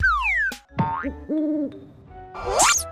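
A couple of cartoonish owl hoots, steady and tonal, sit among swooping whistles and springy sound effects, all fairly loud with no talking.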